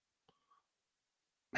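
After a near-silent stretch with a faint click and a soft tonal blip, a sudden loud sneeze bursts out at the very end and is cut off abruptly.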